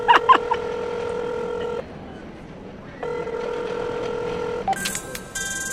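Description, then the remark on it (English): Electronic telephone tones over a line as a call is dialed: a few quick beeps at the start, then two long steady ringing tones separated by a pause, followed by a brief burst of higher, brighter tones. “answer your phone.”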